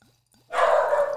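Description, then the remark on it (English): A single loud dog bark bursts in after a near-silent pause, sharp, ringing out for a moment with a slightly harsh, sustained edge. “And some dog barking.”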